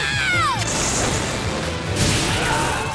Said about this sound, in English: But cumulonimbus clouds may suddenly develop in some areas. Watch out for lightning strikes.